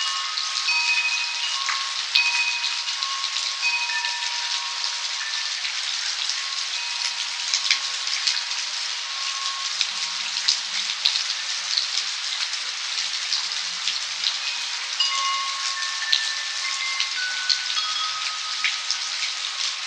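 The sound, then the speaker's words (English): A steady, dense midnight rainstorm in California hisses continuously, with soft bell-like wind chime tones ringing out now and then over the downpour, recorded by an artist for an album. No voices are heard. “We leave you this week in California during a midnight rainstorm.”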